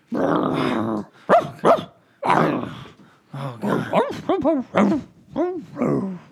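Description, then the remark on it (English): A dog named Barkshi starts with a long, rough growl, then lets out a run of sharp barks and higher-pitched yips in an uneven rhythm, loud and with no one talking. “I mean, just words of wisdom pour forth every time he opens his snout.”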